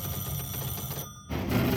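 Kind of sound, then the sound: signal or alarm, telephone ringing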